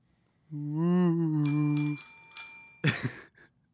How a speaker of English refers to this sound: That was a bell. That was not a fitting sound effect.